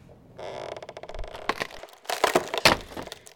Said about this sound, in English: The door came off again, Daddy. Never mind. It'll let some of the water out.